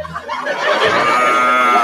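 A drawn-out cow moo, loud, holding a steady harmonic tone for nearly two seconds with no talking over it.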